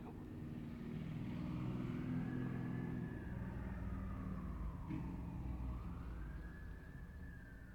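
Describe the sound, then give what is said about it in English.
A motorcycle engine rumbles past in the background, swelling and then fading, while an ambulance siren wails with rising and falling tones over steady traffic noise. No one speaks. “Little rant with that motorcycle and the ambulance in the background.”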